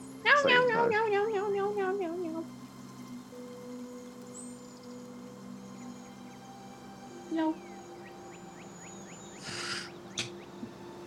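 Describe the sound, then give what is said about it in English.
A cat gives one drawn-out, wavering meow, rising and falling in pitch before trailing off, followed by a low steady hum and a few faint clicks and chirps. “Oh, the cat, that's”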